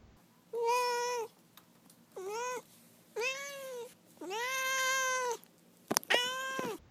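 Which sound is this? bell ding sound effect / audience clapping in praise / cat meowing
cat meowing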